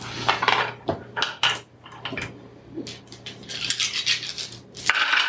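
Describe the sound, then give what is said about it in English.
Seven dice, rolled for a reaction roll in a tabletop game, clatter and rattle across a hard tabletop in a quick burst of sharp clicks and knocks, settling, then another flurry of clattering follows, fairly loud. “Roll a reaction. Roll 7 dice.”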